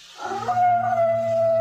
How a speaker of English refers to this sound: Hear them? Coyotes. It's a lullaby you sleep to in San Amado, if you can sleep.